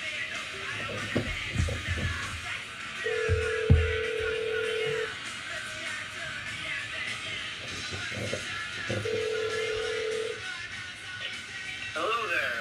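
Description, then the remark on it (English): A phone call being placed to a band from New Jersey: a few clicks of dialing, then two steady ringback tones about six seconds apart, heard over a faint background hiss. “Let's give them a call.”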